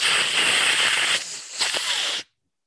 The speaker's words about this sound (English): let's hear your vacuum noise. There was a vacuum next to me and I was just going to turn it on and put it into the mic. That, you know, that would have been cheating.